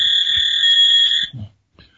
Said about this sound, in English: Oh, my God. There goes that fax machine again.